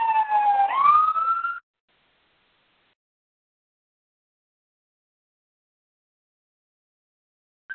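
A fire engine siren wails briefly, its loud tone sliding upward for about a second and a half before cutting off abruptly into silence, with a faint blip returning at the very end.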